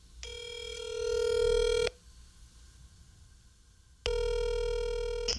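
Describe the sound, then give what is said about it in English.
A phone call to the speaker's wife rings out on the other end: two long, buzzy electronic ring tones separated by a pause of quiet line hiss, fairly loud, with no talking. “Let's get her on the phone here.”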